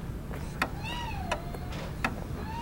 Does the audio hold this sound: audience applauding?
no